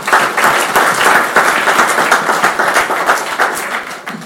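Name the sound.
audience applause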